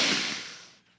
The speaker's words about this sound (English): Sniffs a rose.